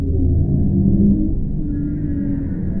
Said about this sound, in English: And then the bowhead whales, roaring, low frequency moans.